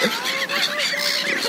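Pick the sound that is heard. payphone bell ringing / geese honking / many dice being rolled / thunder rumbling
geese honking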